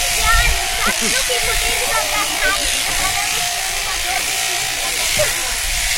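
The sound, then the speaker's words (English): Electric sheep shears drone steadily, a continuous buzzing hiss that runs unbroken through the whole stretch as the belly wool is clipped off a sheep, with faint voice-like murmurs mixed in underneath. “Now we're around, the belly wool comes off, we're right around the touch area, moving the sheep around.”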